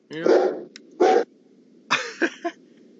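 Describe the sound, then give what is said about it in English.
A female dog lets out a few excited, yelping barks and whiny vocal bursts, two longer ones followed by a quick cluster of three, against a quiet background, as someone plays with her and riles her up. “Yeah, she's so very excitable every time she sees anything out front.”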